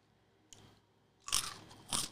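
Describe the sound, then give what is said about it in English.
Two loud, crisp crunches of sparrow egg peanuts, a hard-shelled peanut snack, being bitten and chewed, preceded by a faint softer click, with no talking. “They're so loud. I want to just get a bag of these and just chew them in a library.”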